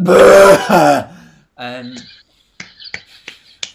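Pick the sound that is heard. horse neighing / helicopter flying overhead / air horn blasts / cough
cough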